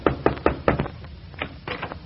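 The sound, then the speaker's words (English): Four firm, evenly spaced knocks on a wooden door, clear, followed by a few softer, muffled sounds and then quiet; Dennis Day, playing a Hollywood film magnate, knocks on the door of the Middletown Little Theater League. “Dennis Day, who, in the guise of a big Hollywood film magnate, is about to knock on the door of the Middletown Little Theater League in an effort to get some actors to do his forthcoming radio.”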